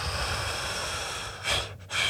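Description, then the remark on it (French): A long, forceful exhale followed by two shorter breathy puffs of air, with no talking, demonstrating the final breath let out in tantric breathing practice. “T'sais, quand tu fais du tantrisme, c'est quelque chose que tu apprends beaucoup, la respiration. T'sais. Puis ta dernière, celle que tu laisses sortir, ben, tu fais...”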